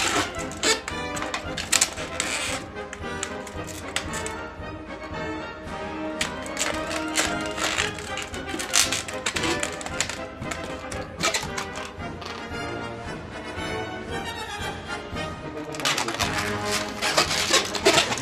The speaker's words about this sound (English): This is the most annoying sound I've ever heard in my life. I can't think of something more grating on my ears. These balloons.